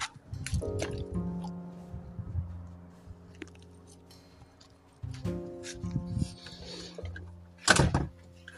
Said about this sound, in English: I'm sorry about that. Background slamming doors and shit.